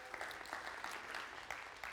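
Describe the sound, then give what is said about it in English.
A church audience claps for the children of the church, a dense patter of many hands with frequent sharp individual claps standing out, holding at an even, fairly loud level throughout. “And kids, the reason why we applaud you is because you guys are a huge blessing to our church.”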